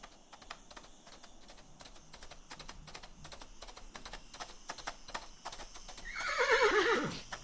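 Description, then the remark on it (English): Steady clip-clop of hooves taps along throughout, then a horse lets out a loud, shrill neigh that slides downward near the end. No one speaks. “Why, that's my horse!”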